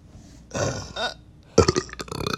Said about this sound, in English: No, I don't have a fart, but like I can make myself burp on command. Do it right now.